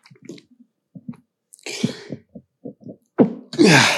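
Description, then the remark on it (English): Someone makes a string of short, hitching breaths and sputters while trying to sneeze, ending in a couple of breathy, half-stifled bursts. No one speaks. “I had to sneeze. I couldn't get it out.”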